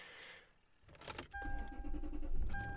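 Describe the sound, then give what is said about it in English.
Keys click in an ignition, then a car engine cranks repeatedly but fails to catch, with a steady electronic dashboard chime tone sounding over the sputtering starter. No one speaks. “That's funny, I just had this thing serviced.”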